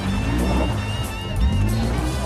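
Heavy truck engines roar steadily as trucks race side by side, with one revving higher for a moment midway.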